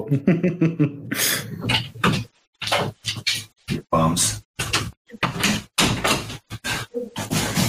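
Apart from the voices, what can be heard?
scratching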